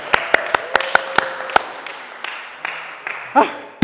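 crowd, round of applause

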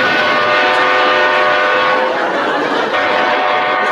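vehicle, train passing by

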